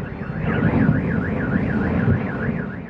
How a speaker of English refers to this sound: In Ukraine, fire and sirens consumed the capital's sky overnight.